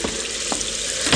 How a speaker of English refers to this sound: This time it was night and rain, and the sounds of desolation that only the wind and the sea can shape.